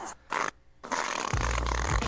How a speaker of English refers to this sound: Why does it sound like he just farted? It does sound like he just farted.